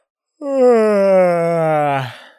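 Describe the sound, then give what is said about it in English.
A single long, voiced yawn, fairly loud, its groaning tone sliding slowly downward for under two seconds before trailing off into a breathy exhale, with nothing else around it. “To yawn means to involuntarily open one's mouth wide and inhale deeply due to tiredness or boredom.”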